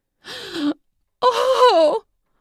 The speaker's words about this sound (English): I clicked the egg toy inside her to the intermittent mode, and she stopped in her tracks and gasped.